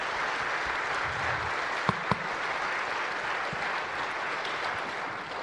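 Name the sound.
round of applause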